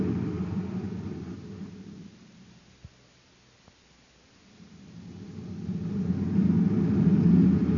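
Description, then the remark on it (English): A low engine rumble drones steadily, fades to near quiet with a couple of faint knocks, then swells back louder as a car drives along a side road at the deserted east end of a spaceport on Venus, speeding up to pass another car. “Speed up, Bob. We can pass him before he gets to the gate.”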